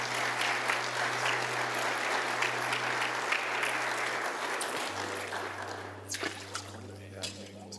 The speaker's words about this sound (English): Would you give him a round of applause as he makes his way?